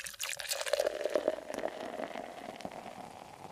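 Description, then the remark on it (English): Hot water pours steadily into a pour-over filter of Copper Cow Coffee Vietnamese coffee, a continuous trickle with a faint ringing tone, lasting a few seconds with no talking. “It's a pour over Vietnamese coffee from the brand Copper Cow Coffee.”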